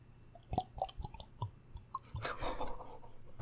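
Close-miked ASMR drinking: wet mouth clicks and sips, then a longer stretch of gulping and swallowing noise, moderately loud, with no talking.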